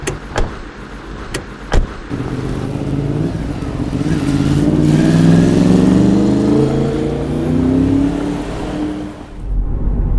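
A few sharp clunks like car doors shutting, then an engine starts and revs, its pitch climbing steadily as the car pulls away and accelerates, loud throughout.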